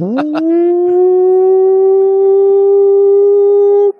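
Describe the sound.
A single long, loud hog-calling yell leading into a 'Pig! Suey!' Razorbacks cheer: a voice swoops upward at the start, then holds one steady, strong pitch for nearly four seconds before cutting off abruptly.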